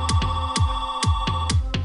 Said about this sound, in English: Oh, wait. Now we get a phone call.